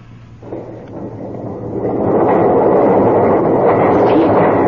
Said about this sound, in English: look! The doors are opening. How? Perhaps Stephen struck some kind of a trigger mechanism by accident.